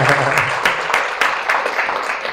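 An audience claps steadily for a couple of seconds, a dense, crackling patter of many hands at a fairly loud, even level, with a few sharper claps standing out.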